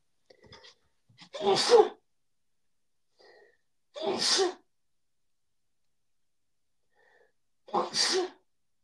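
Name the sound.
sneeze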